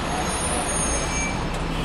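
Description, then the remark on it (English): A city bus pulls away from a stop, its heavy engine giving a steady, fairly loud rumble mixed with broad roadway noise, with no clear pauses or separate events. “Oh, and we just missed one.”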